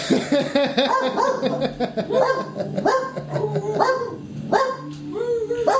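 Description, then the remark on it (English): A guard dog named Baxter barks repeatedly, a run of loud, urgent barks with a few higher yips mixed in, continuing steadily throughout. “You are such a good guard dog.”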